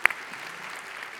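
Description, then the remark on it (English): An audience claps in a dense, steady patter of many hands, opening with one sharp louder clap and then holding an even, moderately loud texture with no voices over it. “yeah, go ahead, let's clap it up.”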